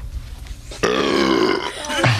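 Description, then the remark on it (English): A loud, drawn-out burp after drinking a beer starts abruptly and rumbles with a rough, buzzing tone for over a second, then trails into a lower, gurgling finish. “I'm sorry, I just had a beer and it's like gross.”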